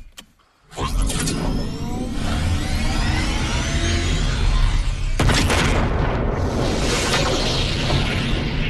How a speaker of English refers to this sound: We need to get a sound bite of like a seatbelt clicking and like something taking off.